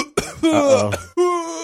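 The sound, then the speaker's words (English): Three loud coughs in quick succession after a hit from a vape pen, rough and strongly voiced with a strained, throaty tone, the last one drawn out, with no talking around them. “But that ain't that dooty dooty dooty cough.”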